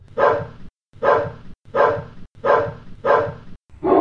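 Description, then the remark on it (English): A dog barks six times in a steady, evenly spaced rhythm, each bark loud, with short silent gaps between them and no voices. “Now, see, if Gizmo had barked, that would have been the time for Gizmo to bark”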